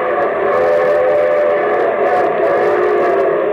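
A steam train's whistle blows loud and sustained over the rumbling chug of the locomotive as the show train arrives to open The Railroad Hour radio broadcast of May 8, 1950, the sound holding steady for several seconds with no voices.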